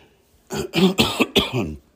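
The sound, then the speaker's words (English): A fairly loud throat clearing in three or four quick rasping bursts over about a second and a half, with quiet before and after and no talking. “Excuse me, I try to clear my throat here.”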